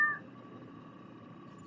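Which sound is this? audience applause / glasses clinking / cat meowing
cat meowing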